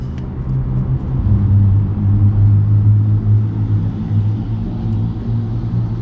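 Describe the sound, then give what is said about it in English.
A Porsche 911 Carrera sports car drives past on Kennedy Road, its deep engine rumble droning steadily, swelling a little in the middle before easing off slightly, with continuous low road noise and no voices. “I'm driving on Kennedy Road right now, and a Porsche 911 just drove by me.”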